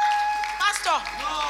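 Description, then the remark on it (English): An audience claps for all the women in Great Assembly in a dense, steady wash of applause, with excited voices rising and falling over it and a thin, constant high tone running underneath. “Why are you clapping for them?”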